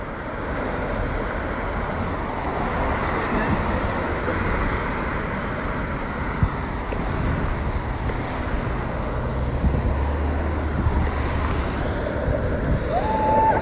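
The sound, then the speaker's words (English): Steady, dense hiss of falling rain mixed with a continuous low rumble of skate wheels rolling over pavement during an outdoor group skate ride heading toward downtown, holding an even loudness throughout with no voices. “Yup, this is raining, baby.”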